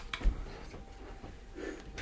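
A water spray bottle meant for spraying yourself while biking gives two short, breathy hisses of mist about two seconds apart, soft and airy over a faint low background rumble, with no talking.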